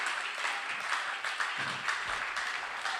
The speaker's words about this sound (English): And if you believe that, you ought to clap your hands and give him praise.